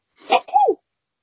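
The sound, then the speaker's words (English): A single close, sharp sneeze: a breathy burst that drops into a short voiced "choo," over in under a second, followed by silence. “bless you.”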